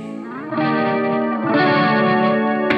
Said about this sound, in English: Here we go. I hear the band setting up. Oh, yeah. They're getting ready. Wow. Boy, they really forgot how to move their instruments.